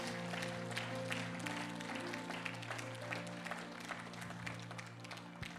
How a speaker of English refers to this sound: Would you clap your hands once again and give them thanks?